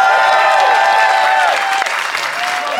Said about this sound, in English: If you think Ian and Ben made the best case, applaud now.